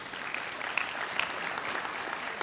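An audience at High Point Church applauds the church band, a steady wash of many hands clapping at an even, moderate level, with a few sharper individual claps standing out; no one speaks.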